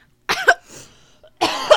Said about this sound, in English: I'm really good at coughing into a microphone.